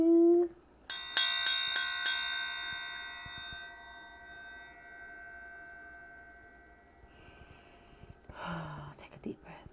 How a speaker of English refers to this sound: Here we go. I have a new bell, guys.